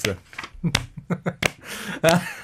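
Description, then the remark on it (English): A slow clap, with sharp, widely spaced hand claps landing roughly every two-thirds of a second, mixed in with voices and other sounds. “I love the slow clap.”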